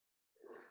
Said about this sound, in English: And again, I don't have the Rona, as far as I know. Sneezing is not a symptom of the Rona, so there you go. Yeah, that's allergies.